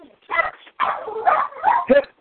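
A puppy yaps and whimpers, a quick series of about four high, squeaky barks with whiny, tonal edges, loud and clear, with no one talking.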